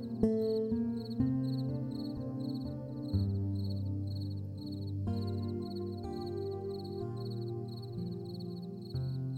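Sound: chorus of chirping crickets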